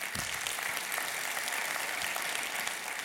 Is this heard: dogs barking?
no